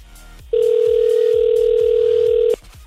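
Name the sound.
outgoing phone call ringing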